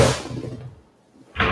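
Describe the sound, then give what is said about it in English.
An office chair's height is raised, with a sharp hissing clunk that fades over about a second, then a second short burst of hiss after a brief pause. No one speaks. “I had to raise my chair because I lowered it and I felt small.”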